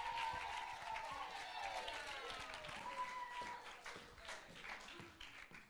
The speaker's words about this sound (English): So give her a big round of applause as she comes to stage.